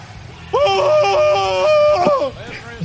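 A person lets out one loud, sustained scream into the microphone while testing voice-chat microphone sensitivity, lasting about a second and a half before cutting off, with faint background noise around it.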